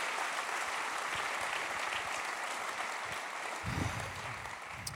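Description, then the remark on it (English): A crowd claps in a sustained, dense round of applause for four men, loud and steady throughout with a brief surge of low rumble near the end. “Well, let's give a round of applause for the four men.”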